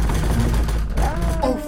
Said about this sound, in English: Dude, what is that? Someone's actually banging on your door. What is that?